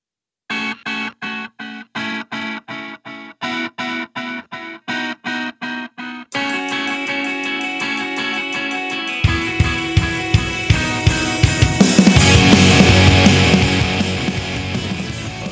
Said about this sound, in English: Oh, also, I have a song, you guys. Listen to it. There's a song now to the show. It's a thing. Listen, it's coming. It's coming soon. It's happening.